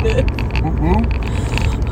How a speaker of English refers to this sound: I bet you could hear the car. Probably. Because this car's kind of loud anyway. Yeah, this ain't the nicest road in the county. No. Pothole City, baby.